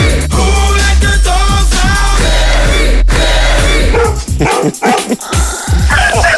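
Loud, rhythmic dog barks repeat over a thumping music track with a heavy bass beat, the barking coming in quick bursts before the sound briefly drops away near the end.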